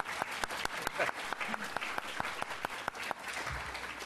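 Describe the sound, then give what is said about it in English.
An audience at the LSE Summer School applauds steadily after a lecture, many hands clapping in a dense, crackling patter with sharp individual claps popping through at a fairly loud, even level. “You can clap, actually.”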